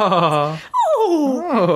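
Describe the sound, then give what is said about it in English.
A dog's loud, reverse-neigh-like vocalization: a steady, buzzy harmonic cry, a brief break, then a long wavering call that slides downward, rises, and falls again. “Reverse neigh. Yeah, it is. It's like a horse going backwards.”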